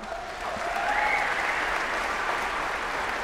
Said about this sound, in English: That's the first time that liquidity in markets has ever gotten a round of applause ever, but I appreciate it. We have a very financially literate crowd.